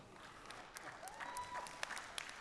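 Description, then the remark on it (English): Steady applause from a group responding to the announcement of a new Kindred campus launch, a continuous wash of clapping with a few sharper, louder claps standing out and faint whistles drifting through, no one speaking. “I feel like that's a slow clap.”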